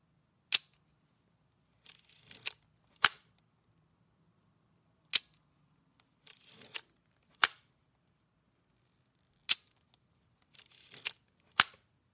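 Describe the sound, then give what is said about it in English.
Crisp mechanical shutter clicks from a Zeiss Icon, an old film camera from the 1960s and 1970s: four sharp snaps spaced a few seconds apart, each preceded by a softer whirring wind-and-cock sound, clear with no talking. “the Zeiss Icon, which is an old film camera from the 60s and the 70s that is the actual shutter sound”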